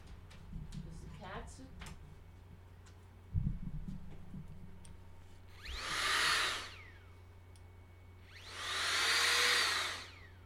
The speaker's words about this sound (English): Wait, I have to get my air spray out.